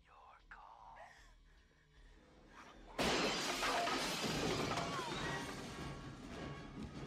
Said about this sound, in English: And then the chair gets chucked through the glass.